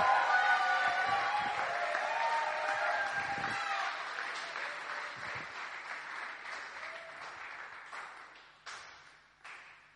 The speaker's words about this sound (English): Give them a clap, a huge clap. Woo-hoo!